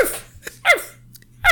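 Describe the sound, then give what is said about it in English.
A person barks like a dog: three short, loud, yelping woofs spaced apart, with a faint low hum underneath. “Bark like a dog.”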